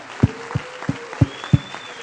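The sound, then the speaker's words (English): Steady applause honoring veterans and serving military members fills the background, with about five louder, evenly spaced claps standing out over roughly two seconds. No one speaks. “They deserve a big round of applause.”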